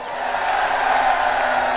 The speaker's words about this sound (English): And the crowd cheered.